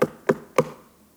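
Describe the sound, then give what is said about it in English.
Three firm knocks on a door in a steady, even rhythm, fairly loud, each one thudding briefly before fading into quiet, with no voices present. “In the last book of the Bible, in the book of Revelation, there's this beautiful picture of Jesus standing outside of a door of a house knocking.”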